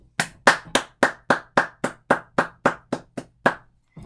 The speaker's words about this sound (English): And we need to, in all honesty, we just need to applaud the people who do art. And that's why I'm going to get up right now and clap for them.